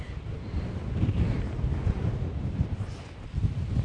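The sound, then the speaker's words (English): Strong wind buffets the microphone in a continuous low rumble, with gusty bursts swelling and easing throughout, loud, with no voices present, in extreme windy conditions outdoors just north of a marae, about 8 or 9 metres from a car park. “So it's pretty windy here, as you can hear. It's pretty extreme conditions, actually.”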